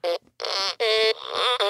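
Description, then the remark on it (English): A toy fart machine piano from a toy store plays four buzzy electronic notes in quick succession, each a loud, reedy raspberry tone with a short gap between them, with no talking; it is used to find the notes of vocals. “It's a fart machine piano, and that's how I tune vocals.”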